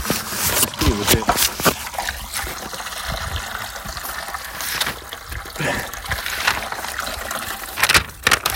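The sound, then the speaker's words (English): Clean-looking water pours steadily into a dirty bucket, a continuous hissing, splashing rush that holds at an even level for several seconds, with brief faint voices near the start. “This water looks pretty clean. Yeah. I mean, I'm putting it in a dirty bucket, but.”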